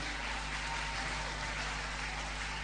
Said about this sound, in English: put your hands together for them. Wow, it's too powerful. Oh, your clapping is very weak.